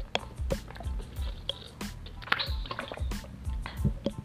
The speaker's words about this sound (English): Let me drink some water first. It might sound gross, so I'm just